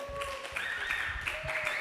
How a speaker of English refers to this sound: You got a stronger applause than I did